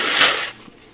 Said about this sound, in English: Excuse me, need to blow my nose a little bit.